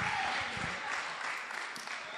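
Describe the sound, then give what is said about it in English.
A crowd claps steadily for Jesus for a couple of seconds, a dense, continuous patter of many hands without distinct individual claps, at moderate, even loudness. “Clap for Jesus. Please clap for Jesus.”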